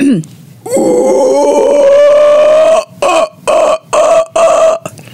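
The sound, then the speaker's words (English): A person imitates a howler monkey: a long, loud, rasping throaty roar followed by four shorter guttural bursts in a steady rhythm, harsh and growling like an exaggerated throat-clearing. “It sounds more of like somebody clearing their throat in the morning, but very loud. So you know how to call a howler monkey.”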